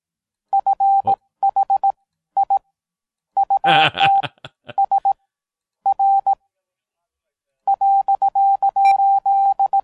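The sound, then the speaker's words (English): Morse code beeps: a single steady mid-pitched tone keyed on and off in short and long pulses, grouped with pauses between letters, interrupted midway by a brief crackly burst of noise. “Learn Morse code.”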